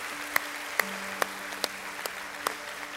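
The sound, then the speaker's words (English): Slow, evenly spaced claps from a church audience in Maryville, about seven sharp hand-smacks in steady rhythm, fairly quiet over a low constant electrical hum, with no voices. “And so, church family, whether you're in Knoxville or you're here with me in Maryville, can we just all give a round of applause for those decisions that were made?”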